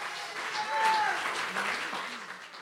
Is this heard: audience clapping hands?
yes